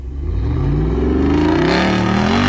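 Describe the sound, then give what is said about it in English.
A throaty V8 engine revs up loudly, its deep rumble climbing steadily in pitch over a couple of seconds with no voices over it. “Wait, some throaty V8. You need to hear it again.”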